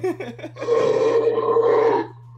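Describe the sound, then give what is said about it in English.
A few short, choppy grunts lead into a big dog's long, deep, rumbling death growl that holds steady and loud for about a second and a half before cutting off, over a faint low hum. “Well, that's a biggie dog. Oh, my doggy doesn't do that. She doesn't do that. That's cool. It's his death growl.”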